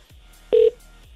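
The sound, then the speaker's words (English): A single short electronic telephone tone beeps loudly for a fraction of a second, like a dialing or ringing signal, as a radio show calls a listener, with quiet background noise and faint clicks around it and no talking. “Come on, pick up.”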